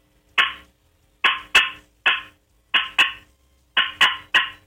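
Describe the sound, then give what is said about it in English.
Sharp, loud turkey cutting from a box call, made to get a turkey to gobble: abrupt clucks fired in quick irregular bursts of two or three, each with a raspy ring, played alone with no talking. “I'm going to cut.”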